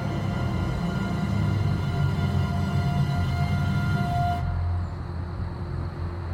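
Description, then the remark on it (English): A steady, loud rumble of road traffic with a low droning hum and faint tonal whine, continuous throughout, easing slightly and growing duller toward the end. No voices. “Yeah, I can hear the traffic now.”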